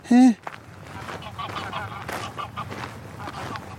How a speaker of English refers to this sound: Right, geese.